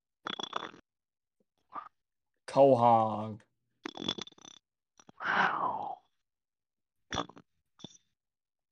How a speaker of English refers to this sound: Sound like I burped, or I'm sleeping.